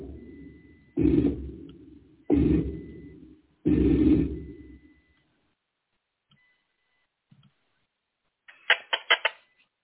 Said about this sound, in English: this is slowed down. This is the original. We call them chirps. Slow down.